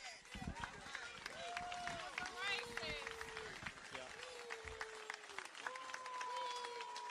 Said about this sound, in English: They're booing him. Governor Ron DeSantis just now got a very tepid reception at the vigil for the victims of the SA shooting. He was also getting jeered some, prompting city council member Jacoby Pittman to chide the crowd.